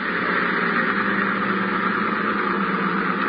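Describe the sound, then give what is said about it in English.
A motorboat engine drones steadily as the boat comes in, a continuous rumbling hum at a constant, fairly loud level with no voices over it. “That boat coming in is probably Ibarra.”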